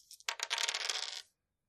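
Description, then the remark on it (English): A brief burst of bright, rattling clatter as three dice tumble across a hard surface, with rapid clicks for about a second before stopping abruptly. No voices. “Who wants to roll 3 dice on table B?”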